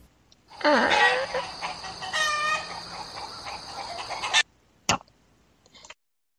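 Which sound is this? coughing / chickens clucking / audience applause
chickens clucking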